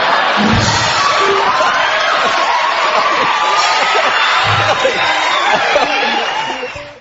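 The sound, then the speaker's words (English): A studio audience on Jay Leno's Tonight Show in 1995 breaks into loud, sustained applause mixed with cheering and whoops, after Jay Leno asked Hugh Grant what the hell he was thinking. A dense wash of clapping holds steady for several seconds before fading at the end. “The applause that got, and for whatever reason, that stuck with people, and it was literally from that point forward until Jay stepped down for the first time”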